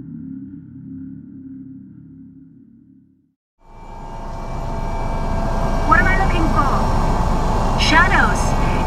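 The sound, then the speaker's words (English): A muffled low engine hum gives way, after a brief silence, to a loud, steady helicopter roar of engine and rotors, constant, with a few faint chirping tones over it, as the helicopter flies through fog and wind into Njalasund. “Visibility outside the helicopter is greatly obscured, with fog and wind in the endless sunlight encompassing the craft in white.”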